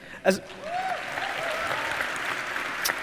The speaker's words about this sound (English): See, you did it again. You clapped for yourself.